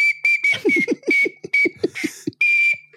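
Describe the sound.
Someone whistles a dance tune in short, shrill, same-pitched bursts repeated in a driving rhythm, with low thumping beat-like pulses underneath, fairly loud.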